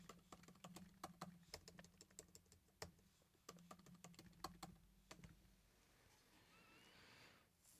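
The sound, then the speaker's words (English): Quick, uneven clatter of keys being struck on a computer keyboard, fairly loud, in bursts for about five seconds before trailing off into quiet background noise. “Most of the times I can type fast.”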